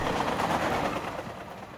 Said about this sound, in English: The train pulled away.